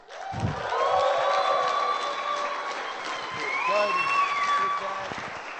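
A crowd breaks into sustained applause, dense clapping filling the space with scattered cheers and whoops rising over it throughout.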